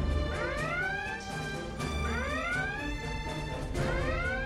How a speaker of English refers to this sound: I really like episodes where there are alarms. Red alert. All hands stand to battle stations.